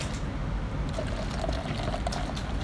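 A drink is poured from a large bottle of about 20 to 25 ounces into a glass, a steady gush and gurgle lasting a few seconds, its pitch creeping upward as the glass fills. No one speaks.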